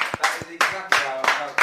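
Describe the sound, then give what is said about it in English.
Several sharp hand claps land at an uneven pace, roughly five or six in under two seconds, mixed with wordless vocal sounds from people in the background. “Can I just say, actually, the fact that you are still doing a 5 Friday this many years on is absolutely amazing, and I want to clap.”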